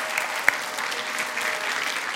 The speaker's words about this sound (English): Let's greet the King of Kings and the Lord of Lords on our feet. Let's stand on our feet. Just welcome the King of Kings and the Lord. Just applaud him. Applaud him.